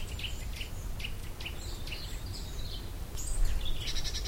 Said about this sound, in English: We'll see what all these birds are. That's a nuthatch calling.